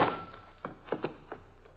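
A heavy thud of a blow to the head, struck by someone who sneaked in from behind, lands at once, followed by a handful of softer, muffled knocks spaced irregularly and fading away, with no voices.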